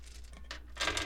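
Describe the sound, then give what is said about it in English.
A short burst of small hard objects clattering onto a surface, dice spilling out of a bag, with a brief rustle before a brighter cluster of rattling clicks near the end. “Oh, they all fell out.”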